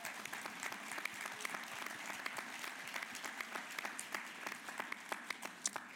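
An audience applauds steadily, many hands clapping in a dense, crackling wash with scattered sharper claps, holding a fairly even level for several seconds without any voices.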